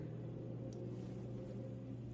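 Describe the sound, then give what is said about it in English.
A vehicle engine revving on a highway drones with a loud, continuous low rumble and hum, holding a fairly even pitch for the whole stretch, with no voices over it. “Who's revving that engine out there on the highway?”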